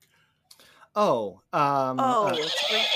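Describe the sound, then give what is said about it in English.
A person imitates a horse's neigh: a short falling whinny, then a longer, louder, quavering one, with no other talking. “Heard a horse”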